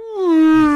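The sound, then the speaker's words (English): A voice mimics whining audio feedback with a single sustained, rich, high-pitched wail that starts bright and slowly sags slightly lower in pitch, held steady and loud for just under a second. “We called them the whales and the dolphins. There's a lot of feedback.”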